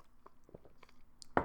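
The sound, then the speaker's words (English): Quiet mouth noises: a few small wet clicks and slurps as water is sipped, ending in one louder, sharper swallow. No one speaks. “All right, so I don't sound so nasal, I'm going to take a little sip of water.”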